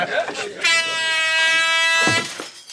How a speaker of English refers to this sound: Yeah, he blasts an air horn in the air to quieten them all down.